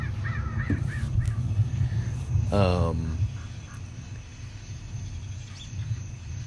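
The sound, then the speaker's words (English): A crow lets out one loud, harsh caw midway, preceded by a few fainter bird calls, all over a steady low background rumble. “My crow buddies.”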